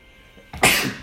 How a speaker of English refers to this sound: I have to sneeze for the first time in about 3 hours.